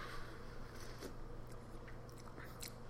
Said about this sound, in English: But here I am. I'm drinking some of this coffee. I'm going to have another sip.